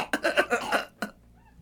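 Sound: coughing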